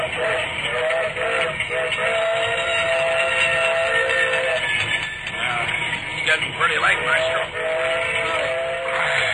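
The whistle of a circus steam train in an Ellery Queen radio drama sounds in two long, steady blasts with a breathy, mid-pitched tone, separated by a short gap, over a constant loud hiss of escaping steam and rumbling train noise.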